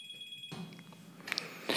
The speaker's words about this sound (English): I got to take this phone call.